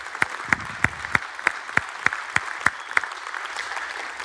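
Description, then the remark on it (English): An audience applauds, with about ten loud, evenly spaced claps standing out above a steady wash of clapping before the rhythm dissolves into softer, scattered applause. “If you believe that this morning, let's display that by a round of applause.”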